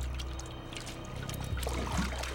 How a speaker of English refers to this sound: This time, he heard the soft motion of liquid sloshing beneath his feet. It was dark and viscous, deep purple red in the candlelight.